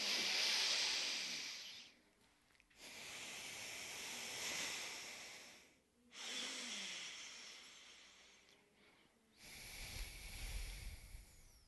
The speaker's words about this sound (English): And, you know, when people tell you to breathe, you're like, yeah, how? Well, alternate nostril breathing.